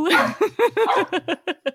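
A dog gives a quick run of short, excited yips and barks, close and fairly loud, the bursts coming faster and smaller toward the end.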